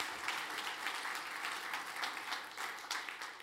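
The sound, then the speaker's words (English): A crowd applauds steadily, a dense wash of many hands clapping at once with no one speaking, holding a fairly even, moderate level throughout. “Can you give these guys a big round of applause?”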